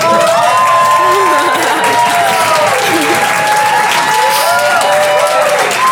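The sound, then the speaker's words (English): An audience breaks into sustained, loud applause, a dense wash of clapping mixed with cheers and whoops that rise and fall throughout. “I live for your applause.”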